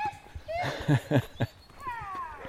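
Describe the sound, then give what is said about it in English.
Playful noises of two puppies playing: high whines and squeaky yips sliding up and down in pitch, broken by three quick, louder growly barks in the middle. “these dogs, two puppies that are playing instead of obeying their master.”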